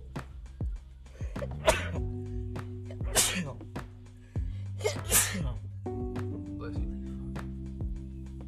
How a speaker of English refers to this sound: Bless you. Oh, I feel good. Don't you ever have like those pressures where like after a sneeze you're like, oh fuck. Yeah, it just feels good to like sneeze.